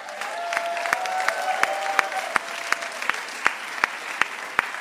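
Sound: tepid audience applause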